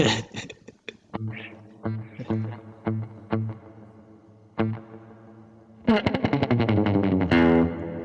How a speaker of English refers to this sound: Yeah, probably the littlest slapback and go wild with the delay. Or wild with the reverb, sorry.